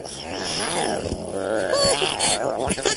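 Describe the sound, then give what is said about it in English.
A person on all fours growls and snarls in imitation of a snow leopard, a rough, rumbling vocal growl that rises and falls continuously for a few seconds, fairly loud. “So he's just on all fours and he's like growling.”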